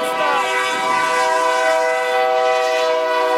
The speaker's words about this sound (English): All right, here comes the train. Oh, I don't think he's going to stop.